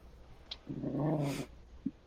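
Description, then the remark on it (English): A big dog gives a low, rumbling growl at a shirt, lasting under a second, framed by a couple of brief clicks and rustles. “Big dog's growling at the shirt.”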